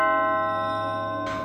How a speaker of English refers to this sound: Are you going to press the doorbell, or should I? I'll just don't know. Oh, for goodness sake, I'll press it. That's a good idea, Cromarty. Press the doorbell.